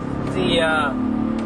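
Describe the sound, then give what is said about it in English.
Steady road and engine drone from inside a moving car on a highway, with a much faster car rushing past in a brief rising-and-falling whoosh midway through. “By the way, there are some cars going much faster than you, and you're not going slowly.”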